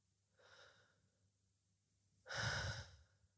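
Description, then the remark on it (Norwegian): Deep belly breathing, a person breathing deeply with the belly to calm down: a soft, slow inhale followed after a pause by a longer, louder, airy exhale, with no talking. “For å puste dypt og puste godt handler egentlig om å puste med magen igjen.”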